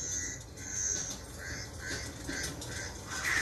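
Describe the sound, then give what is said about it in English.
Crows cawing in a quick series of harsh, repeated calls, several in a row at a steady pace, heard outdoors over a constant background hiss with no one talking. “Oh, it's crows.”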